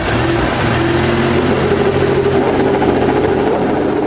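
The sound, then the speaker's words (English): Several IndyCar race car engines, running on methanol, roar to life together at the start of the last 2006 IndyCar Series race, held September 10 at Chicagoland Speedway: a loud, steady, droning rumble with rising revs throughout, continuous with no voices. “That was the start of the last race of the 2006 IndyCar Series, held September 10th at Chicagoland Speedway.”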